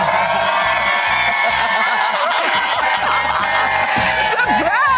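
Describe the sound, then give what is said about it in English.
A loud, sustained crowd roar of cheering, whooping and excited shouts from a crowd gathered for a live Today Show surprise at a man's front door, with high-pitched squeals and laughter rising throughout, dense and unbroken for the whole stretch. “Look at this incredible crowd behind you.”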